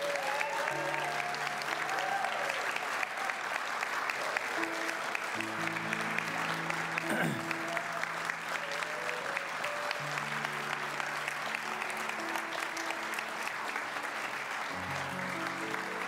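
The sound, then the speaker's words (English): A large audience claps steadily and loudly for the full stretch, welcoming seniors and their families to the stage at a senior recognition, a dense unbroken wash of applause with faint tonal music playing underneath. “And so if you would, with a resounding round of applause, would you welcome our seniors and their families to the stage?”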